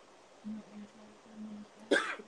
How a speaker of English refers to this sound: Sorry about that. Man. That darn cough again, but. Getting sick.